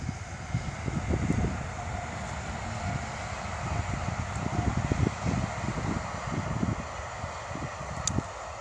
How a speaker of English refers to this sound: Yeah, I wasn't going to try and talk over that because, as you know, there's a main railway line runs just behind me.